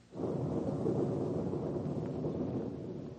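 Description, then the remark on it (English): A deep, continuous rumble of thunder rolls on for a few seconds as a storm approaches, loud and broad with a slight fade toward the end, and no voices over it. “Oh, dear, we're going to have a storm.”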